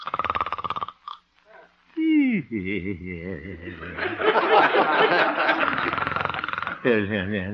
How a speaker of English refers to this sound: Looking into the little house on 8th Avenue, we find the town's most popular radio figure, Honest Harold the Homemaker, gently snoring and evidently having a very pleasant dream.